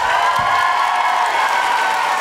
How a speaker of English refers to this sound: And can I have a huge, huge, huge round of applause